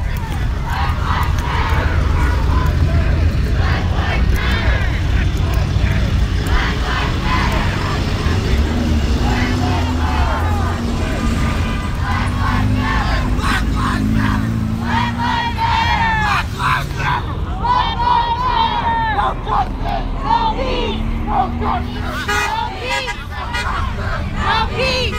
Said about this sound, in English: What you are hearing in this podcast are the chants, shouts, and car horns from passersby at the protest, which took place Monday at the General George Armstrong Custer statue at West Elm Avenue and Monroe Street. The protest was loud